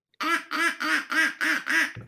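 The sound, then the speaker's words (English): Six loud, evenly spaced quacks from a duck call, each a harsh nasal honk about a quarter second long, played in a quick steady rhythm with no talking. “No, some companies just sold an actual duck call.”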